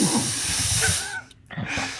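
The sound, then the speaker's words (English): A person hisses through the teeth in a long, steady breathy rush, breaks off for a brief moment, then starts a second hiss that carries on to the end. “Meanwhile, I, you know, made a hissing noise”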